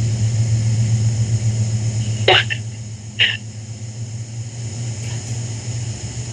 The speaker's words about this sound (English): God damn it, there's a fucking train outside.